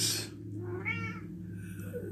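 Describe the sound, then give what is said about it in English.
A cat lets out a drawn-out meow, followed by a softer, shorter mew, with a steady low hum running underneath and no talking. “Pookie knows. But I can't understand. Meow.”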